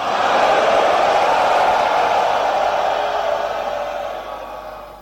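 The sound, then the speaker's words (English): An audience roars together like lions when the preacher calls for somebody to roar, a loud, sustained wall of many voices that holds steady for several seconds before gradually thinning and fading at the end. “Let me hear somebody roar, hallelujah.”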